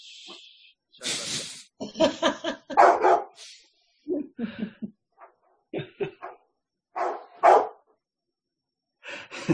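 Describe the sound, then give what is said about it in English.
A dog barks repeatedly in irregular, loud bursts, with short gaps between barks and no one talking over it. “That's a beautiful dog, by the way.”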